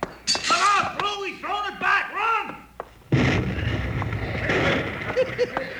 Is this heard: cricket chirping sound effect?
no